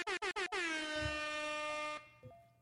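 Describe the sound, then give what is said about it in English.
An air horn sound effect blares in three quick stuttering blasts followed by one long sustained honk that cuts off abruptly, loud with no talking. “Air horn time.”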